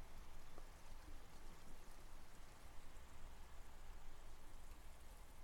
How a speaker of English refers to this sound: the water running, has been taken from a beautiful recording made by John Gard and composition using the water from the well as it flows out of the wellhead